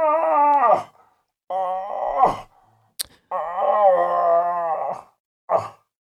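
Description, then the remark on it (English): A cow moose calls with long, nasal, wavering moans that drop off at the end, three drawn-out calls and a short final one separated by pauses, with a sharp click midway. “And I crack off my sexy cow call that Paul taught me.”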